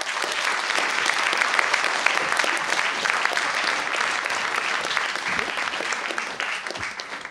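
Sustained applause from an audience, a dense steady patter of many hands clapping at a fairly even loudness for several seconds, with no speech over it.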